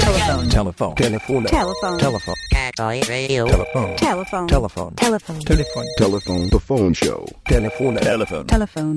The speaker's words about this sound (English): That's right. There's the phone ringing. The fucking phone.